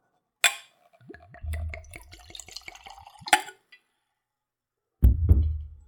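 A glass clinks, then tequila glugs out of a bottle with a metal screw cap into a clean Glencairn whiskey nosing glass in a quick rhythmic pour, ending with another clink and a soft thud as the bottle is set down.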